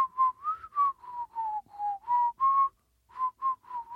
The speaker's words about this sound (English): That's inhaling whistling. Let's try exit.